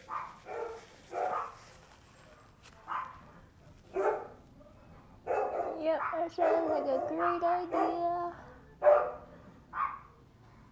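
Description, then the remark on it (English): A dog barks and yelps in a string of short, uneven bursts, moderately loud, with a person talking in between. “Sorry, you can hear the dog, probably.”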